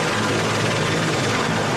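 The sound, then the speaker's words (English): A helicopter roars steadily and loudly, its dense engine noise layered over a low, pulsing rotor throb with no break, as it flies released captives to medical facilities. “And captives released by Hamas were flown by helicopters to medical facilities.”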